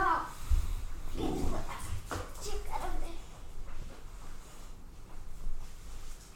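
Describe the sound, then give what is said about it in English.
Dogs scuffle, the biggest dog on top of the smallest dog, letting out short barks and high whimpers in a busy burst over the first few seconds before things settle into a quieter rumble. “The biggest dog was on the smallest dog.”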